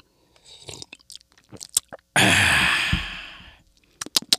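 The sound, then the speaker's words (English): Sipping tea from a cup: soft wet mouth clicks and a quiet slurp, then a long, breathy satisfied exhale that fades out, followed by a few more small lip sounds. No talking. “So let's get into this synopsis after a sip of my tea.”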